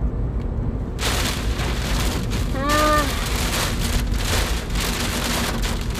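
Heavy rain drums steadily on a car as it drives, a dense hiss over a low road rumble, with one brief wavering squeak partway through.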